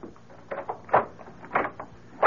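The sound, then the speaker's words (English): A door being unlocked and opened, heard as a few irregular metallic clunks and rattles, with the last one loudest. No one speaks. “Why have you got the door locked?”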